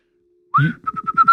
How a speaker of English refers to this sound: Are you whistling as you walk?